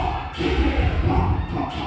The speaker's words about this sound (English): As the performers spin, dip, and twirl, the crowd erupts for the people with the most impressive moves.